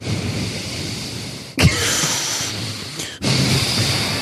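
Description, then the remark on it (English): Someone imitates Harrison Ford's heavy breathing through the nose: three long, loud, hissing breaths, each about a second and a half, separated by brief breaks, with no talking. “Breathing through the nose like that.”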